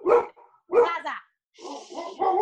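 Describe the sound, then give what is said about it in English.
A dog barks loudly, with two sharp barks in quick succession followed by a longer stretch of rougher, continued barking. “Sorry, dog.”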